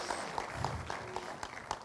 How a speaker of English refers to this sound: So this is why we do it, but it's also fun just to clap and say good job, right? So give them a big hand.